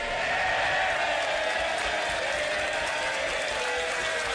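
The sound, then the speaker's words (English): A crowd claps and cheers in a steady, dense burst of applause within the jingle of PMQs Unpacked on Times Radio, holding at an even level for about four seconds, with no one speaking. “You've now got cheering and clapping.”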